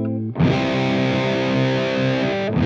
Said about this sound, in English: Another common type of distortion is clipping. This is when the signal gets boosted so much that the top of the waveform gets completely flattened.